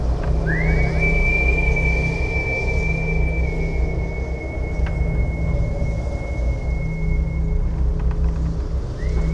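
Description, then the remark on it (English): Wind whistles around the corner of a wharekai on a marae in a thin, steady high tone that rises in and holds for several seconds before fading, over a constant low, roaring rumble of gusts. “The wind hits the corner of the wharekai and swirls around, making a creepy whistling sound.”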